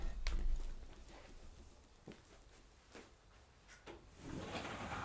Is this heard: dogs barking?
no